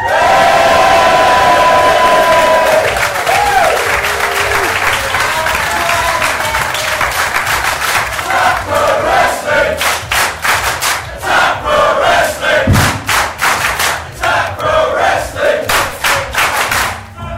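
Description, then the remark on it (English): A crowd erupts in loud cheering and whooping as the camera is spun around to them during a Facebook Live broadcast. This gives way to sustained rhythmic clapping and scattered shouts, all loud and dense throughout. “I'll spin around the camera now and you can all cheer.”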